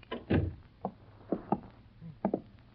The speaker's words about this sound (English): Shut the door.